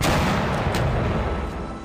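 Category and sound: sound effect, cannon firing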